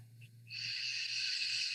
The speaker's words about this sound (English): And then you'll just slowly let it out through your mouth. Remember that breathing sound. It's okay to make noise.